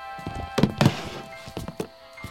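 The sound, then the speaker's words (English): A couple of dull, solid thunks as a tape recorder is set down on a kitchen table, followed by a few lighter knocks and taps, with a faint steady hum underneath. “Is there someplace I can set this down? Sure. Come on in the kitchen.”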